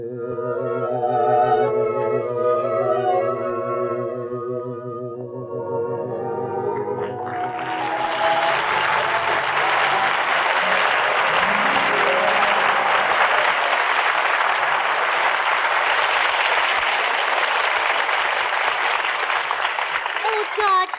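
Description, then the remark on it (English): A sung note with accompaniment fades out, then loud, dense audience applause swells up and continues steadily for about thirteen seconds without letting up. “I heard all that applause outside.”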